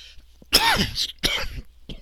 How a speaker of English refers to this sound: Excuse me, that cough is getting to me.